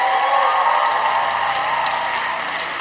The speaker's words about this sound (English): Wow, give the Lord a mighty hand clap.